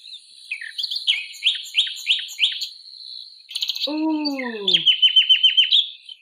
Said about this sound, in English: Ooh. What do you think that is? Is that a tit? Oh, no. It's a nightingale, apparently.